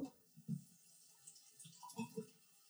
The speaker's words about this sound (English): Pour me up, big dog.